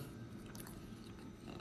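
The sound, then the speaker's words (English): Wet chewing of a chili cheese dog, with a couple of sharper bites and smacking mouth sounds over a steady low rumble, no talking. “I get some more chili dog.”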